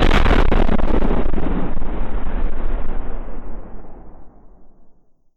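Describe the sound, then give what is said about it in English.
A massive, booming explosion with a sharp blast followed by a long rumbling roar of debris and fire that gradually fades away over several seconds, heard on its own. “So imagine the explosion that could be created by a pickup truck loaded with grenades.”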